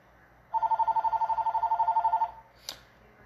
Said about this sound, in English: But, oh, I'm recording in my living room, so random noises might ensue. Can someone pick up the phone? Apparently not. I'm too lazy to get it.